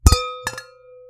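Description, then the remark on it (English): Wine glasses clink together in a toast before drinking wine, first a quick double tap and then a second cluster of taps, leaving a clear ringing tone that fades slowly. No one speaks. “And with that, I think let's cheers. I want a drink. Cheers. Cheers.”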